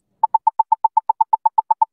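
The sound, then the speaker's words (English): A crossing app's walk-signal feedback, heard whenever the walk signal is activated and made similar to beeping accessible pedestrian signals: a rapid, steady train of short mid-pitched beeps, about eight per second, at even loudness, with no one speaking. “So this is a feedback that you'll hear whenever the walk signal is activated.”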